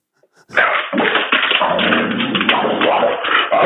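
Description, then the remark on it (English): A pet boxer dog, about a year and two months old, vocalises insistently for attention, a continuous run of whines and grumbling noises lasting about three seconds after a brief quiet start. “My dog is like, he gets upset when no one's paying attention to him.”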